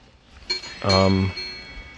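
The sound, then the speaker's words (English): Wind chimes clink with a bright metallic ring that lingers, and a person's voice speaks briefly over the fading tones. “Your wind chimes are working.”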